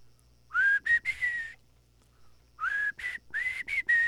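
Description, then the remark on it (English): A person whistles a tune, clear and fairly loud, in two short melodic phrases separated by a brief pause, with no talking. “I really wish I could whistle.”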